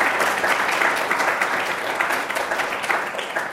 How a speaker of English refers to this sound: Finally, I would like to thank Zurich Foundation for their generous support that allows us to bring distinguished leaders in our field. Please give an applause to Zurich Foundation.